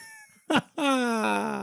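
A cat lets out a quick chirp followed by one long, drawn-out meow, fairly loud, with no talking around it.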